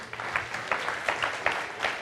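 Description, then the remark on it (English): A round of applause for Paul: many hands clapping together in a dense, steady patter with sharp bursts standing out, sustained at a moderate level for about two seconds with no voices. “All right, everybody, give Paul a big round of applause.”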